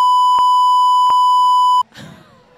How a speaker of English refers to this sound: I mean, I could beep the words out.